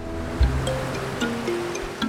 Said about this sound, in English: His eyes returned to the churning waves below. Suddenly, he found it impossible to look away.